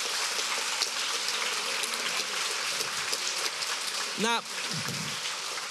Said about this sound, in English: Thank you so much to all our speakers tonight. Can we please give them one more round of applause?